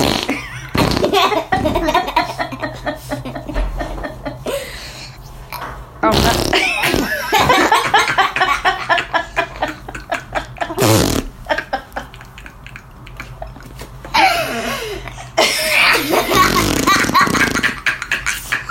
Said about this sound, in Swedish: Jag har pruttljuden.